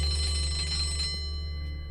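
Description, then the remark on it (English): An electric school bell rings in a loud, steady metallic clang for about a second, signaling the next change of class, then its bright tones hang on and slowly fade, with no voices present. “the ruined cheek, and got up to leave as the bell signaled the next change of class.”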